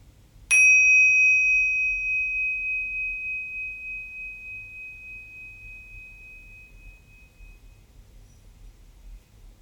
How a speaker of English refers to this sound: And when you hear the bell, we'll finish.